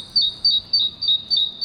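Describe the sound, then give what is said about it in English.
A great tit sings an urban song: a quick, high-pitched two-note phrase, repeated about six times in a steady rhythm, clear over a low background rumble. “As a consequence, great tits in London, Paris, and Berlin have modified their behavior. They now sing at a higher pitch and faster than normal.”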